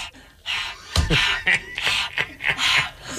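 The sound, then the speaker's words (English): A person imitates a dog panting with quick, breathy huffs in a steady in-out rhythm, fairly loud, with no words spoken. “I'm like, all of our listeners know what a panting dog sounds like, but you still had to make it a point to go...”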